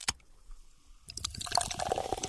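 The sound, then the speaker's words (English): A single sharp clink, a brief quiet pause, then ice cubes rattle as liquid is poured steadily into a glass, fairly loud, with bright splashing until the end. “Maybe some new sounds, like ice cubes, maybe.”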